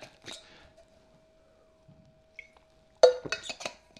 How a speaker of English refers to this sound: My super duper water bottle.